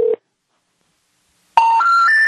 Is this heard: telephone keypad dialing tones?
yes